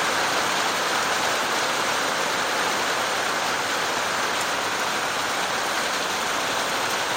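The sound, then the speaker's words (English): Steady summer rain on a very hot day pours down in a continuous, dense hiss, loud, with no pauses or voices, just an even wash of falling water throughout. “I'm not even sure if you can hear me through the rain.”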